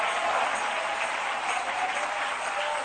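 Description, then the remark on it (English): An audience claps loudly and steadily, a dense, continuous wash of many hands applauding at once with no break or pause, and no voices rising above it. “Anybody clapping the loudest clap, your life is changing.”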